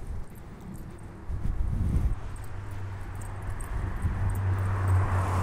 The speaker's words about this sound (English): Right now, just be aware of the sound of the approaching car.